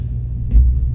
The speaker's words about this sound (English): Dryer's done.